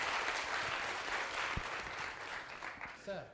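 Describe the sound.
An audience applauds a guest for sharing her story, in a steady, dense wash of clapping that holds fairly loud throughout, and a voice briefly rises over it near the end.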